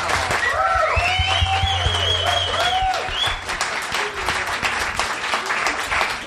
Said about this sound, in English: So can we just give them everybody, can we give them all a big round of applause?